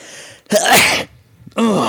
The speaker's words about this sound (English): Oh, I'm going to sneeze. No, I'm not. Go on, do it in the microphone. Do it in the microphone. Go on.